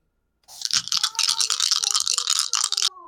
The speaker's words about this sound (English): Here, those crunchy dice. One of them's a nat 20.